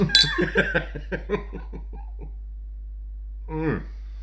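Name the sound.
champagne glasses clinking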